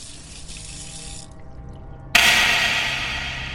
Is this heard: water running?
yes